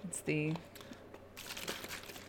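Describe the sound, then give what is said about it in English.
A plastic water bottle crinkles while someone drinks water from it, in a quick run of sharp, crackly bursts over the last second, after a short voiced sound near the start. “I started when you were drinking water.”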